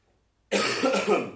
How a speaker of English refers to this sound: You still have a nasty cough. Oh yeah, that cough has still not gone away. Here it comes.